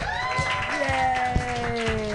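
A crowd at a comedy show cheers and whoops in sustained, pitched voices for the host while scattered hand claps break through irregularly, at a fairly steady, moderate loudness throughout.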